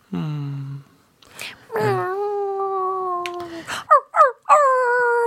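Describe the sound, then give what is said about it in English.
A person mimics a dog, drawing out long whiny whimpers and then letting out a few short, sharp barks, with no other talking. “Don't know what the dog noises are about.”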